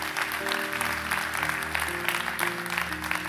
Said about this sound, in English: Come on, church, let's clap. Come on, really clap for everybody that said that prayer.